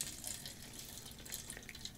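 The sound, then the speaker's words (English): Grape juice pours steadily into a glass, a continuous splashing trickle with bright bubbling highs that lasts about two seconds, with no talking over it. “Yeah, just pour it all in.”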